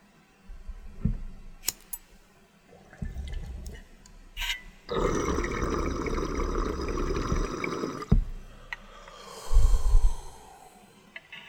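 Someone takes a hit of Gorilla Glue strain cannabis: a couple of sharp lighter clicks, then a long, rough, rushing inhale of smoke lasting a few seconds, followed by a brief breathy exhale, with no talking.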